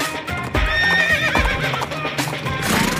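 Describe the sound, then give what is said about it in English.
A horse whinnies loudly, its high wavering neigh ringing out over a steady clip-clop of hooves, with a few sharp hoof thuds standing out beneath it. “The Four Horsemen ride four horses all at one time. Giddy up.”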